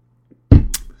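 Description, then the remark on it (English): A dull thump followed by a short, airy slurp as someone sips coffee, all over a faint steady low hum; no one speaks. “You're going to listen to me sip coffee.”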